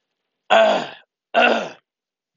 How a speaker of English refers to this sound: Man, I'm trying to clear my throat. That's a must.